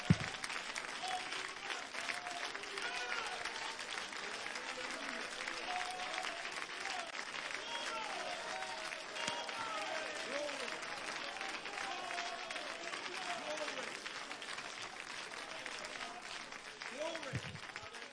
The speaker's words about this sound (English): Would you clap your hands, lift your voice, and glorify God a moment?